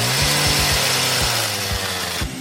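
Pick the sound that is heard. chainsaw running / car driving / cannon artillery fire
chainsaw running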